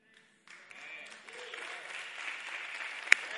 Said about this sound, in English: All seven of you can clap for that. Come on, put your hands together for that. Everybody in the room.